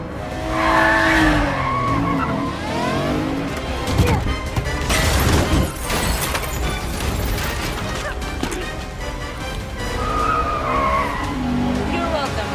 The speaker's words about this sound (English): But before then, here's a car chase.